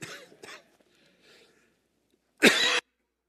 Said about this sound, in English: Is that cough coming back? No. No, it's not coming back. You just think you heard me cough.